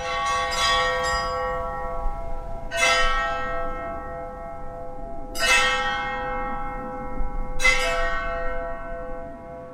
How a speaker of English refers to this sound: So we cut the bottom off the welding tanks, hung them up, and then we beat them with ball peen hammers. It was a small church.